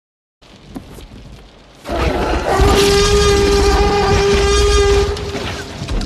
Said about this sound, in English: But the thing that gets me every time, even still, and this is 93. So what, this movie's 30 years old, is his roar. Oh, the T-Rex's roar.